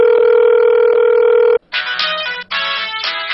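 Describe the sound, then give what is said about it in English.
A steady telephone dial tone hums loudly for about a second and a half, then cuts off and gives way to two bursts of bright, buzzy dialing tones as someone calls to ask about a job making a TV show, with no one speaking. “So I called up to check into it.”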